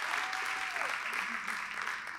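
An audience claps together in steady, dense applause, a continuous crackle of many hands with a faint low tone sliding underneath and no clear speech.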